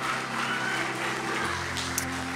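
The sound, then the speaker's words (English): A church crowd claps hands in praise of Jesus in a dense, steady burst of applause that holds at an even loudness throughout, with a low sustained musical hum running underneath. “Could you give Jesus a hand clap of praise in the house?”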